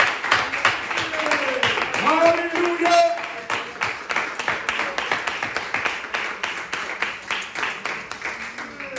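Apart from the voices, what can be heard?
audience applause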